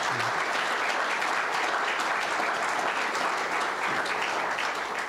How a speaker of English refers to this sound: Can you give her a round of applause for sharing her story?